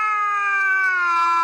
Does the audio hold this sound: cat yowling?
yes